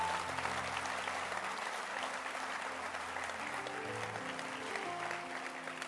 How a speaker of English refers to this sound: And then add a hand clap to the reading of the scriptures.